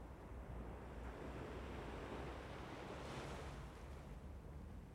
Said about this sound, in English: Concentrating on the sounds of the waves, I closed my eyes and steadied my breathing, trying to calm my jitters.